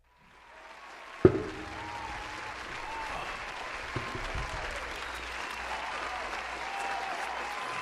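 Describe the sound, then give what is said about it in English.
A sharp bang opens into sustained group applause, a dense crackle of many hands clapping that holds at a steady, moderate level for several seconds without any speech. “We probably shouldn't applause this nigga being dead.”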